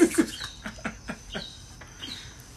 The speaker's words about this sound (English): That bird's trying to piss me off, bro.